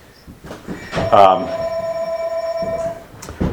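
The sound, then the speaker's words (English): A telephone rings once with a steady electronic tone lasting about two seconds, clear, while people talk around and over it. “And that's our phones”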